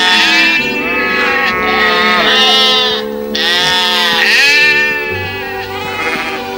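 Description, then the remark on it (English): Loud sheep bleating in a continuous overlapping chorus, several wavering baa calls layered together throughout, with no speech. “We don't ask sheep, dear. We tell them what to do.”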